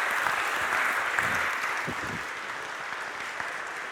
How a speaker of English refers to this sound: Can we give Katie a round of applause? Thank you.